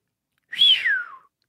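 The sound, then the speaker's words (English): A single astonished whistle, a quick clear tone that rises slightly and then slides down in pitch, lasting under a second, fairly loud, with no talking. “It'd be cool if we could get a sound of someone doing one of those astonished whistles and then just insert it.”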